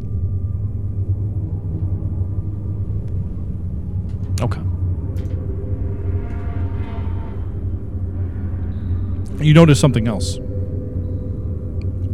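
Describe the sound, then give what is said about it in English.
A very fast motorcycle roars past a pickup truck in a passing lane over a steady low road rumble, its engine whine surging loudly for a moment near the end. A person speaks briefly. “A very fast motorcycle? Yeah, passing a pickup truck.”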